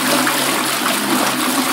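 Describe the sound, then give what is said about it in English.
A toilet flushes, a steady loud rush of swirling water filling the whole short moment with no voices over it. “Sekejap, saya flush. Saya nak flush sekejap.”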